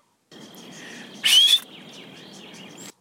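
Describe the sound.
A person whistles in high, bird-like chirps in a recording studio over a steady hissing background. A sharp, louder rising whistle bursts out in the middle, loud enough to blow out the preamps, before the softer warbling resumes.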